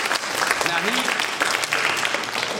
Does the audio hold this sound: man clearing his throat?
no